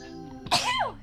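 A single sharp sneeze bursts out, a quick breathy intake followed by an explosive, noisy release that trails off with a falling vocal tone.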